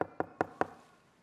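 Four quick, firm knocks on a door, evenly spaced, each a sharp thud with a short ring, then silence. No voices.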